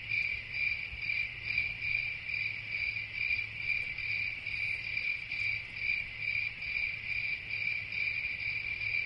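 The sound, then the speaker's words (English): Crickets chirp steadily in a continuous, shrill trill with a gently pulsing rhythm, moderately loud, over a low background hum with no voices. “Let's just sit and listen to the relaxing crickets for a while.”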